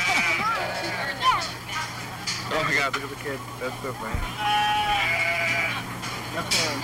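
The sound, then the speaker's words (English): A goat bleats several times in wavering, nasal cries over a steady background hum with indistinct voices mixed in, as a child tries to get the unwilling goat to move. “This is the classic, like, child trying to get their animal to move. The goat doesn't want to move.”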